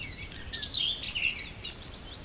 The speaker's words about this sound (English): Envelop yourself in the environment and feel that you're really here, amongst the trees, the chirping birds, and the soft, crackling bonfire.